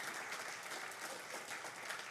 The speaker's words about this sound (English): Great job, students. Would you please give them a round of appreciation and applause today?